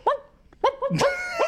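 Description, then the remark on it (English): A person imitates a dog with a rapid string of about five loud, yelping barks, some drawn out into whiny tones, with no other talking. “He doesn't speak. He walks around barking.”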